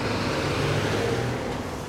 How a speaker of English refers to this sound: We'll be going all the way up north on the Kilburn High Road through Cricklewood to Brent Cross. Now, out of... Oh, hang on, there's lots of fucking traffic. This fucking cunt in a truck.